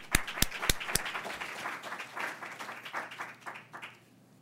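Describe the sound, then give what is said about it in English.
An audience at a Cato Institute talk applauds for speaker David Rivkin, a few sharp loud claps at the start giving way to a steady patter of many hands that fades out toward the end. “So let's all give a round of applause to David Rivkin.”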